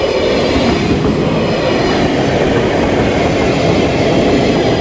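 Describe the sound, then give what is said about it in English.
A double-decker passenger train running from Amersfoort to the east of the country rolls past, a loud, steady rumble of wheels and carriages with faint rhythmic clatter that holds constant throughout, with no voices. “These are double-decker trains that go from Amersfoort to the east of the country.”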